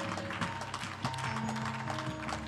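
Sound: audience hand clapping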